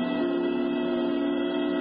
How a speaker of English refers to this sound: Just a year before, early on New Year's morning, Lydia Winters had stood at the door of her uncle's apartment with Elliot, listening to the whistles ushering in the new year.